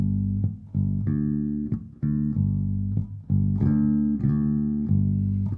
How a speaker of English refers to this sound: I mean, the great thing about bass is you just take your hand and just put your hand here and play two notes. And again, everyone in the world can hear the whole song and know exactly what you're talking about.